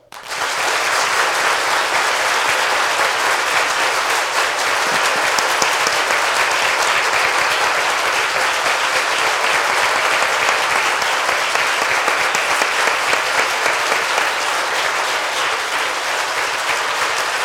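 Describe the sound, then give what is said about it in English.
A large crowd claps steadily and loudly for about seventeen seconds, a dense, continuous wash of applause with no voices breaking through, filling the room from start to finish; the audience, asked to clap their hands as hard as they can, gives a standing ovation. “to clap your hands as hard as you can, as if you were so excited that whoever you think needs to be in the president next walks in the house, and out of honor, we give them a standing ovation. Don't say a word. I just want you to clap your hands.”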